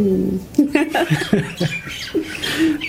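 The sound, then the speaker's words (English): Birds squawk and chatter in a busy run of short, harsh calls, one after another with little pause, steady in loudness throughout. “The birds are saying goodbye as well.”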